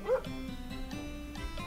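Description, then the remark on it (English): A person imitates a dog with one short bark, a 'woof' as dogs are said to go in the UK, followed by a faint, steady tonal hum for the rest of the moment. “A dog. Yeah. Woof. What do they do in the UK? Well, they woof.”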